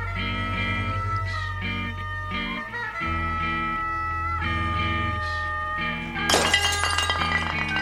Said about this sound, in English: they leave the breaking glass in.